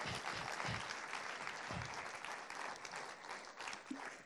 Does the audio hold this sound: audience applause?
yes